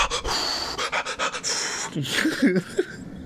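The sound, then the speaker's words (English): A person imitates Lamaze breathing with a quick, rhythmic series of breathy pants, followed by a few short voiced vocal sounds. “Because after he got into it, but you know for sure he did the Lamaze breathing.”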